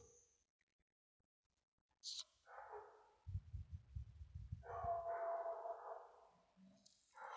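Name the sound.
dog barking outdoors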